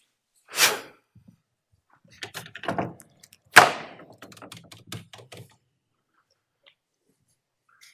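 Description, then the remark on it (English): A door opening sound effect: a sharp latch clunk, then a stretch of rattling clicks and a second solid thud followed by settling clatter, fairly loud with no voices. “Third door. Accomplishments.”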